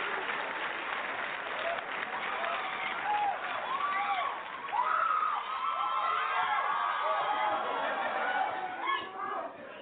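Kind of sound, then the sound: crowd, audience applause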